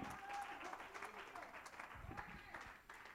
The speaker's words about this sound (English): Hallelujah. Somebody clap your hands and give God some praise.